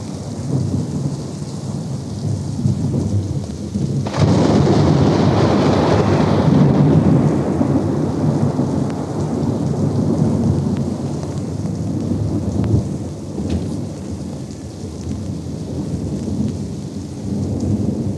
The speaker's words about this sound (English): Wet. Wet there. Wet but here. It's raining up there. Well, this is... It's raining in Pasadena, folks.